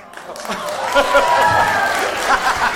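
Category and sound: crowd, audience round of applause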